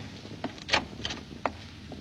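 A door opens and shuts with a few short clunks and rattles, one firmer thump standing out, over a steady low hum with no voices.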